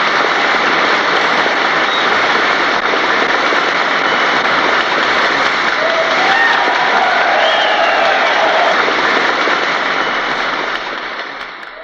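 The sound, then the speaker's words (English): A large American crowd cheers and claps at the United States' declaration of war on Japan in December 1941, a dense, steady roar that stays loud for about eleven seconds, then starts to fade at the very end; a recording preserved in NBC's Library of Sound. “The cheers and excitement of a nation about to enter its most destructive war.”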